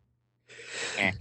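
A single sneeze: a rising, breathy intake that bursts into a sharp, hissy blast, heard alone with no talking, over in about a second.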